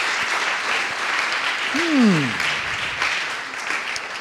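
Steady crowd applause welcoming a speaker fills the whole stretch, a dense, even patter of many hands, with a short falling vocal whoop rising out of it midway.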